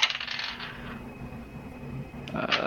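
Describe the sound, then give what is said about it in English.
Dice clatter and rattle down through a dice tower during a Dungeons & Dragons game, a busy cascade of hard tumbling clicks that settles briefly before a final bright rattle near the end, fairly loud, with no voices. “His rolls always sound like a party. Yeah. You got that dice tower.”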